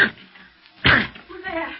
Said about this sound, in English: It's locked. But the door's flimsy. I'll break it.